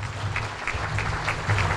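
An audience claps steadily, a dense patter of many hands with sharp bright clicks recurring throughout, backed by a low rumble. No one speaks over it.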